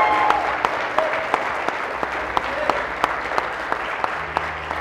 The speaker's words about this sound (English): Hey, can we give them a round of applause? Amen, amen.